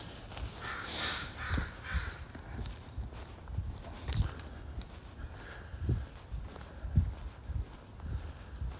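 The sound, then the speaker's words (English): Crows caw repeatedly in harsh bursts over an outdoor street background of footsteps and faint street noise. “So let's head down to the other street and see if we get swooped by crows.”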